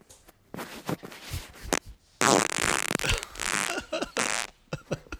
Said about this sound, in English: So we have a secret fan. Here are the farts from the secret fan. Mystery man. There were two. This is number one.